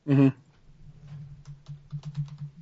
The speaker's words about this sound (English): Uh-oh. I hear typing. Right. So typing.